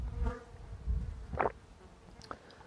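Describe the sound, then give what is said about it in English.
A quick sip of homemade spicy chai: a short, airy slurp followed by a faint swallow, over soft low rumbling with no one speaking. “Excuse me, quick sip of tea.”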